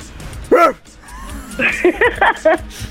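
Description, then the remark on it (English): A person does a dog impression, letting out one loud bark followed after a short pause by a quick run of four or five yappy barks. “It's Chien is a dog.”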